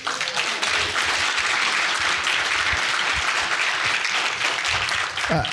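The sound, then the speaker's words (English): A crowd in Wisconsin applauds and cheers the possibility of fair maps, with dense, continuous clapping and cheering throughout, scattered voices rising within the noise and a brief shout near the end. “Our hosts were joking that the cheering for the possibility of fair maps is like a very low bar, but it is revolutionary in our state.”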